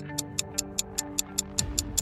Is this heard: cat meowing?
no